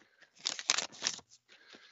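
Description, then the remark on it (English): Paper rips as an envelope is torn open, a crinkly, scratchy burst lasting under a second, then a few softer rustles as the paper settles. “So let's tear into this bad boy.”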